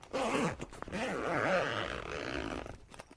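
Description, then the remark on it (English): A zipper being drawn open on a zipper-topped leather briefcase lying on the front passenger seat of a car, a steady rasping pull lasting a few seconds with slight wavering in pitch as the slider moves along the track. “On the passenger side of the front seat is a leather briefcase with a zipper top.”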